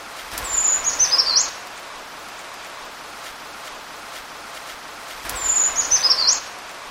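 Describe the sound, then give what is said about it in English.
A brown creeper sings twice, each a thin, high, wavering phrase about a second long, separated by several seconds of quiet with a faint rain-like hiss in the background. “So before I move on, I will play the brown creeper song just one more time.”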